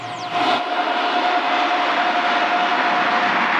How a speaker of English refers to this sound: They land and they're on that runway like we were just now, and this plane comes overhead.